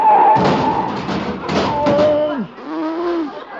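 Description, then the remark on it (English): A car that missed a signal change crashes into the car in front, breaking its headlight: several loud, heavy thuds and crunching impacts in quick succession, then a wavering, groaning tone that bends downward and trails off. “Oh, darn it, I ran right into him.”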